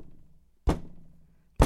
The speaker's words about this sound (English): The three ominous knocks. Right. The doctor has arrived.